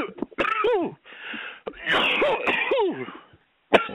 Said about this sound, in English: Don't cough in the phone, you asshole. Nobody wants to listen to that.